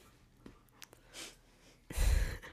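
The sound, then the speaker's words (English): A dog named Ashley panting: a soft breathy huff, then a louder, longer burst of heavy breath near the end, with no one speaking. “to the panting of her dog Ashley.”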